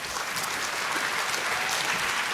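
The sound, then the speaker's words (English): A crowd applauds steadily to welcome a speaker being introduced at an event, dense overlapping claps forming a continuous, even wash of noise with no voices standing out. “Please welcome him with a warm round of applause.”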